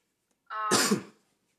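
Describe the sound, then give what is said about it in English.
One fairly loud sneeze: a short voiced intake builds for a moment, then breaks into a sharp, noisy burst that fades within about half a second, with no talking around it. “Bless you.”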